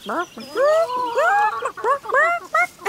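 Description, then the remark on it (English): A person imitates a chicken with a quick run of loud, warbling squawks and clucks, the pitch sliding up and down across about seven bursts. “Can you make a sound like a chicken?”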